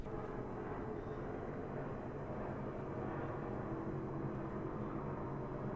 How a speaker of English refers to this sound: We got a helicopter outside. This always means there's someone on the loose.